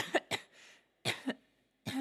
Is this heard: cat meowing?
no